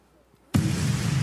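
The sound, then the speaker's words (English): A bomb explosion sound effect: after a brief near-silence, a sudden loud blast bursts in and continues as a dense, roaring rumble to the end, with no voices. “Boom! Boom, boom, boom, boom! Air horn. Bombs!”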